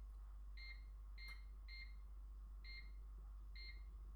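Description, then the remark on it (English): Five short electronic beeps from a kitchen timer as its buttons are pressed to time bags of rice cooking in water, irregularly spaced and fairly clear over a steady low background hum, with no talking. “And I put the timer on.”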